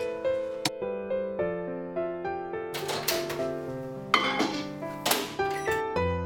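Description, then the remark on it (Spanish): Chunks of a couple of chopped chocolate bars drop into a bowl with light, irregular clicks and clinks, a few single taps and a short clattering burst, over steady background music. “Troceamos un par de tabletas de chocolate, las ponemos en un bol y las derretimos en el microondas.”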